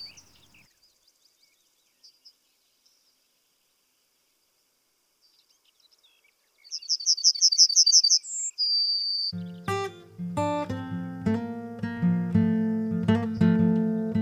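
A yellowhammer sings a quick run of repeated high, thin notes ending in a longer drawn-out note, after faint scattered chirps, before music comes in and takes over.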